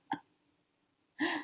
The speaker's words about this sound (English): She has danced. She's joyful and burping.